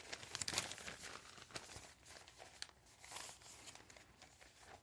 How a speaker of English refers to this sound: All right, I'm going to close the paper.